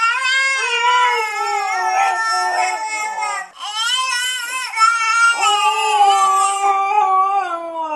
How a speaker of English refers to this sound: And now for your listening pleasure, a baby and a husky imitating each other.